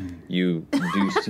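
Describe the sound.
A single short, voiced sneeze with a rising then falling tone, followed right away by someone speaking a few words.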